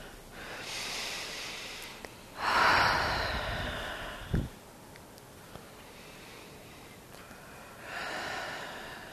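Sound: deep breathing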